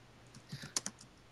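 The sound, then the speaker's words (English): A short burst of computer keyboard typing as someone works to get a clip, several quick, crisp keystrokes in an uneven rhythm, quiet, with no one talking. “I hear someone typing to get a clip.”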